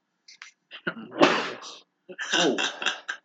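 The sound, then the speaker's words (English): Two loud sneezes about a second apart, each preceded by short sharp inhalations, with a brief quiet gap between them. “God bless you”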